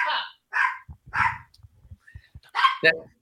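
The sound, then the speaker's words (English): A small 7-pound poodle-terrier mix dog named Astro barks sharply after the doorbell rings, about five high-pitched yappy barks in uneven bursts, with faint low murmuring sounds in the gaps between them. “He's a poodle terrier mix. 7 pounds, a little 7-pound guy with a big mouth.”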